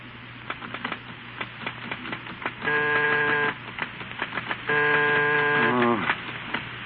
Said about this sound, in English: Steve at his typewriter is trying vainly to concentrate, interrupted repeatedly by the routine of housekeeping